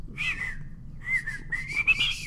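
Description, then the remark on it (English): Someone whistles a short, halting melody in a few breathy, wavering phrases with brief gaps between them, over a low background rumble. “I can't whistle.”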